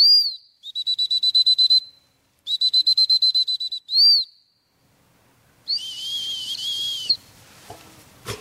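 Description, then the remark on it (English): A shrill, high-pitched whistle sounds in bursts: two rapid trilling runs of short peeps, one quick single blast, then a longer warbling tone after a pause, as a trainer works a gun dog with a training dummy in a field behind a cottage, stopping the dog and bringing it back. No one speaks. “just to give you a flavour for how it sounds to listen to someone working a gun dog.”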